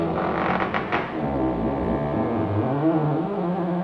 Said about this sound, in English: Didn't you hear that creaking all night? Creaking? What kind of creaking did you hear? Oh, it was awful. The house was creaking all night.